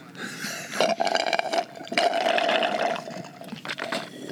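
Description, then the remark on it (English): Someone sips coffee through a straw in three airy, gurgling pulls. Each pull carries a thin steady whistle beneath the bubbly slurp, with short pauses between them and no talking. “I heard the straw. I said, somebody's sipping a straw.”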